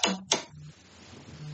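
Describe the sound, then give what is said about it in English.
A mobile phone notification goes off: two short, bright electronic blips about a third of a second apart, followed by a faint low hum with no talking. “Oops, sorry about that, my phone.”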